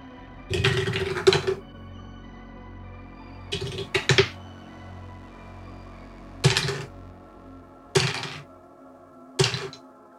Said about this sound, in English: I'll roll 3 hero dice on this.